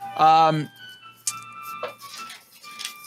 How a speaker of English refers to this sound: Oh. What was that? Oh. What's that sound? My timer's done. Is that a stock sound?